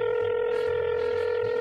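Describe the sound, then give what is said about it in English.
A steady electronic telephone tone hums continuously, like a phone line dialing and ringing through to the senator Duke Lionbreast, fairly loud with a faint low rumble underneath and no talking. “Oh my god, a senator answered his phone instantly.”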